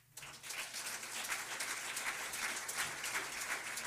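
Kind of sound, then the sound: crowd, audience clapping hands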